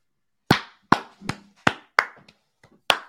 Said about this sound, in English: Standing applause